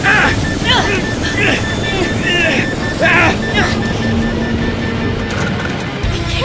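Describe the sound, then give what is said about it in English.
A loud, steady helicopter engine roar fills the scene with a dense rumbling drone as the helicopter goes down, about to crash, while agitated voices cry out over it in short bursts. “look, the helicopter! No. It's going down, it's gonna crash!”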